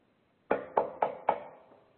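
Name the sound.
knocking on a door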